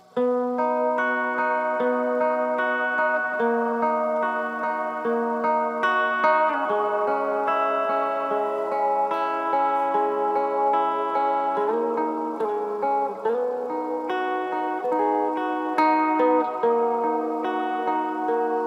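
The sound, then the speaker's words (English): Electric guitar played through a reverb pedal, with chords and single notes ringing and blurring into a continuous shimmering wash at steady volume for the whole stretch, with no voices. “I don't know about you, man, but reverb, I feel like, helps me write songs.”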